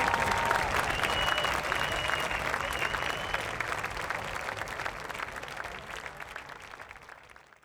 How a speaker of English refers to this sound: Thank you so much. Everybody, give a warm round of applause